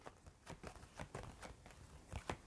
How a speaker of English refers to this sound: That's too many cards. So I'm going to just pick, do a little shuffle here and then pick one.